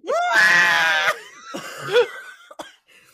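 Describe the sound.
A loud, sustained screech made by a human voice imitating the piercing electronic shriek of a portable Bluetooth speaker being turned on, lasting about a second, followed by a few shorter strained vocal squawks and a sharp click.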